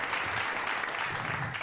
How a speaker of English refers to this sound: Man, look, I got to give that a round of applause, because I'm sitting here drinking it in, listening to our young brother.